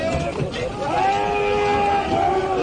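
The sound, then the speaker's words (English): Drawn-out, wailing cries from the devastated, low-lying village of Sha Tin in the New Territories, damaged by the force and height of waves, rise and hold steady over a constant rough background noise, with long tonal voices sustained and no clear words spoken. “The cries you can hear in the background come from Sha Tin, which is devastated beyond one's credibility.”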